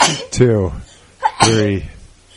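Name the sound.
sneeze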